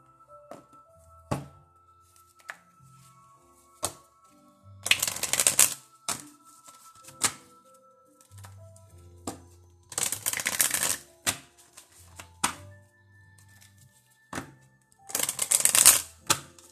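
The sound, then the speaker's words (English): Three bursts of crisp, riffling card shuffling, each a second or so long, separated by scattered soft taps and clicks of cards being handled, as a deck is shuffled to draw an answers card. No one speaks. “Boy, that shuffle be so ASMR.”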